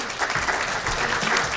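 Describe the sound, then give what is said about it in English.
An audience at a Lumen Christi Institute event applauds steadily to welcome speakers Rick Garnett and Andrew Koppel, a dense, even wash of many hands clapping at a fairly loud level, with no voices standing out above it. “And it says Rick will begin after the applause, so that's now.”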